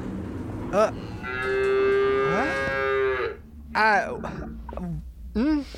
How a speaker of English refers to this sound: That's a cow. Well, sort of. Yeah. Mostly.